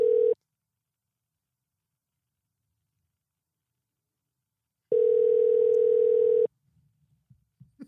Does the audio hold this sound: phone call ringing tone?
yes